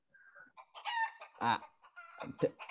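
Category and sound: bird, chicken clucking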